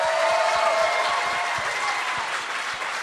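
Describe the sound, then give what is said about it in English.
A live stand-up comedy audience at the Tempe Improv applauds steadily, a dense wash of many hands clapping at once with scattered sharper claps, loud and sustained throughout and slightly easing toward the end. “Another terrific crowd here at the Tempe Improv.”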